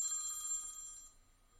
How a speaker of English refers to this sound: Is that your phone, Robbie? Not mine.